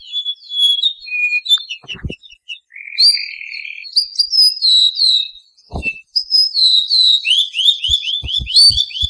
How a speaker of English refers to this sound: The sweet, clear song of the male was a people's favorite, and it begins with a few distinctive whistled notes and ends with a series of downward notes known as a trill.